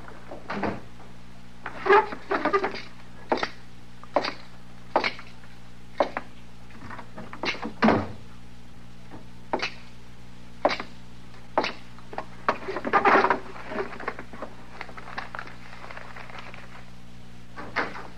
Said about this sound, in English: you want me to close the door into the back there? No, never mind, Chester. I'll do it.